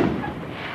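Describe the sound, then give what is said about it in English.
Small New Year fireworks crackle and boom in a steady, muffled rumble with no clear separate pops, heard alone with no one talking. “Little fireworks.”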